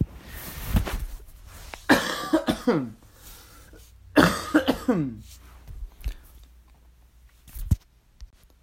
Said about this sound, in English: I apologize for if I have to cough or something. I thought those days were over, but not yet.